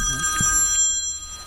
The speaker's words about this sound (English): The phone rang again.